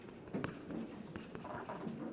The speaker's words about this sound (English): Let's start by dipping a piece of tissue paper into paper mache mixture.